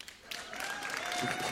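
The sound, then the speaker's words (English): After a brief quiet moment, an audience breaks into applause in answer to being asked who has a mixed race kid. The clapping swells into a steady, moderately loud patter that holds for over a second. “Anybody by applause have a mixed race kid?”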